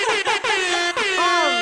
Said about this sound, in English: I'm going to put in, like, an air horn here or something.